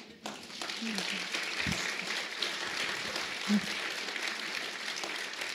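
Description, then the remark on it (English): An audience at a talk about the book Bridge of Clay applauds steadily, a dense, crackling wash of many hands clapping at an even level for several seconds, with a few faint voices mixed in. “Such a nice audience. Just clapping.”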